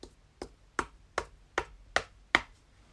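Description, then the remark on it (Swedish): Seven sharp, hollow knocks land in a steady, even rhythm, each one crisp and brief, growing slightly louder and brighter toward the end, with no voices. “Plötsligt så hör de någon som knackar.”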